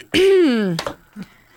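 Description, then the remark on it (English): A woman clears her throat once, fairly loud: a drawn-out voiced rasp falling in pitch, then a short catch and a faint trailing grunt. “clearing her throat.”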